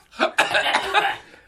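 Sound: coughing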